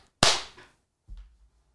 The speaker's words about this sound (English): He just clapped. With no wind-up at all. Wow. I'm impressed.